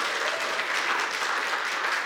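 An audience at a 9:30 gathering in Cressona claps for Tremont in a dense, steady wash of applause lasting about two seconds, with individual claps blurring into continuous crackling noise at an even volume and no voices.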